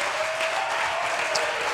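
A church audience claps their hands in praise of the Lord, a dense, steady wash of applause, many hands at once with no clear rhythm, holding a loud, even level throughout.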